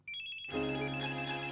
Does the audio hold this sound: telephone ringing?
yes